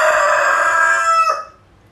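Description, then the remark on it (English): A rooster crows loudly, one long sustained harmonic call that holds steady before dropping off sharply and fading out near the end. “God designed the chicken so that the chicken may crow like that, really.”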